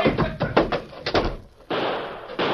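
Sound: door slamming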